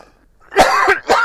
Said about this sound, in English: Forgive me, I'm going to cough.